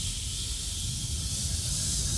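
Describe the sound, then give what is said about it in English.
A person imitates a snake's hiss with one long, steady, breathy hiss that holds at an even volume for about two seconds, with no talking. “Like you're a snake.”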